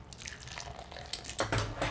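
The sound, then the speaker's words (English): Beer, an unfiltered, dark-looking, amber-colored farmhouse ale, pours steadily into a glass, with a fizzy, gurgling texture that grows fuller and louder near the end as the glass fills. No one speaks. “A little pouring out for my homies.”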